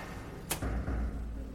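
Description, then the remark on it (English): A door, gently pushed by hand, swings open: a quick airy whoosh followed by a low, soft thump and a brief rumble, with no voices. “It swung open, lighter than I had expected.”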